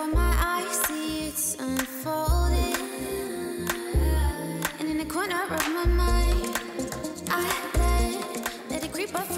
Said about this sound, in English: Uh-oh, there's some claps. I like the claps.